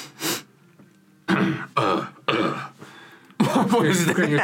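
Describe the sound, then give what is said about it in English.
A man's voice imitates his dad clearing his throat: a short breathy burst, then several loud, gravelly rasping bursts, ending in a longer rough grumble. “Is that you clearing your throat? No, it's my impersonation of dad clearing his throat.”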